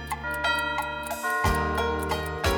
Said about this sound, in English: The mouse ran up the clock. The clock struck two.